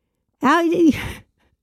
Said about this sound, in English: How are you finding it interesting when you're yawning? Instinctive response.